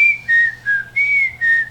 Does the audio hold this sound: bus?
no